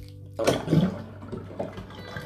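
Water gushes and gurgles as it is let out and drains away, starting abruptly with a loud rush and settling into a steady, swirling flow.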